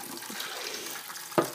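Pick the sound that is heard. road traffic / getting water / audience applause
getting water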